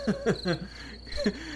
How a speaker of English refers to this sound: Let the crickets play.